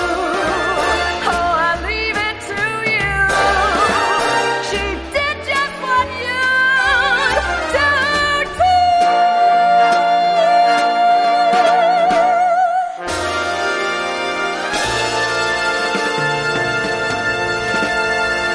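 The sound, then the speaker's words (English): An old-fashioned show tune from the 1931 musical The Cat and the Fiddle plays loudly and steadily, with a vibrato-rich voice holding long sustained notes over a full orchestral accompaniment, pausing briefly before the music swells again. “That song, by the way, from The Cat and the Fiddle from way back in 1931.”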